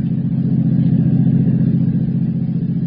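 A car engine revs and accelerates, a steady low rumbling drone with a throbbing pulse that holds loud throughout, no voices present.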